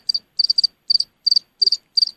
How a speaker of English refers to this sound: Yeah, that one, like... Yeah, it sounds like that, like a cricket.